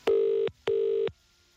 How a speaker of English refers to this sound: This is how we got on ringing The Guardian's confidential tip line earlier on with our shocking breaking news. Have a listen.